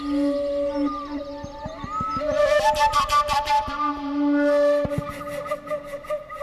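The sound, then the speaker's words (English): A tylinka, a very simple traditional Ukrainian flute with a single sound hole, imitates nature sounds with sustained, breathy whistling tones and gliding pitch bends, backed by sharp percussive hits and a burst of rapid rhythmic pulses midway. No one speaks. “It is a very simple flute with a single sound hole that a musician can use to imitate nature sounds and bird calls.”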